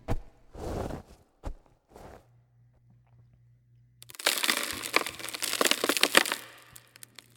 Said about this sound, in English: Blood ran down his fingers as the sound of falling dirt became distant, replaced by the creaking of the wood making up his coffin.